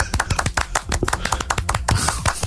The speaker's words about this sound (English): My clapping is a bit loud, so I like that for a more.